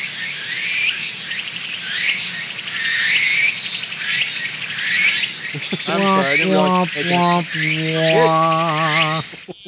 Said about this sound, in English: Cue the cricket sound.